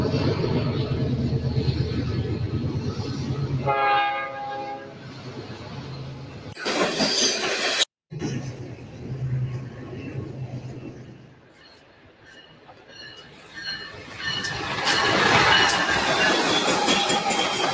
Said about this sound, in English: This is the official fucking train for the Bozos. God damn, here it go.